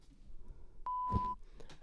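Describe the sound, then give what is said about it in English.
A steady electronic censor bleep cuts in for about half a second, a clear single tone masking a spoken word, with faint muffled voice sounds around it. “so we won't be using the concert beep.”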